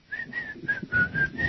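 A person whistles a quick run of about six short, airy notes at a steady, fairly high pitch, moderately loud, with breathy gaps between them and no talking.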